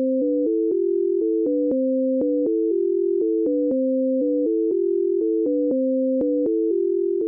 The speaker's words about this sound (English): Deutsch recreated a simple set of tones alternating between low and high and sent it to the left ear